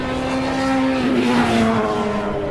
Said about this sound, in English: That was Fizzy's Ferrari popping and crackling, fizzing away.